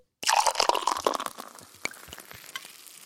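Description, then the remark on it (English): A fizzy drink crackles and hisses as someone takes a sip, a dense burst of popping bubbles that starts abruptly, then thins into scattered pops and faint fizz. No one speaks. “Everybody, this is the moment where you take that sip as we take a sip too.”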